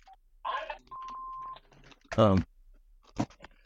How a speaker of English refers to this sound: And this like phone ringing here, you know, and this. Let me just.